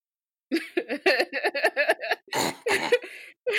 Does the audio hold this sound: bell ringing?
no